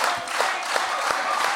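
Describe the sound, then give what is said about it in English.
A crowd applauds and cheers for Tate in a dense, steady wash of clapping, loud and continuous with scattered sharper claps poking through, no single voice standing out. “He just did something and you're cheering for Tate.”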